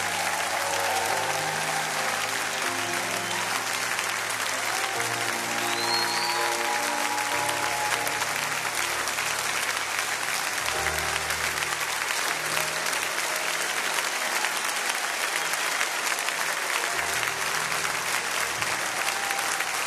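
An audience at a church service breaks into sustained, loud applause to welcome a pastor, a dense wash of clapping that holds steady for the full twenty seconds, with a sustained low tone humming underneath.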